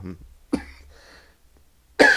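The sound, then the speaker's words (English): A cough bursts out sharply, followed by a raspy exhale and a second loud cough near the end, with no talking in between. “excuse me, I'm sorry, I have just a little bit of a cough.”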